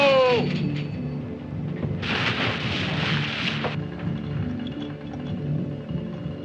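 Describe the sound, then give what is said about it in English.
Deep, rumbling native drumbeats roll on steadily throughout, with a sharp rising whine at the start and a burst of broad hiss washing over the middle. “Not breakers. That's drums.”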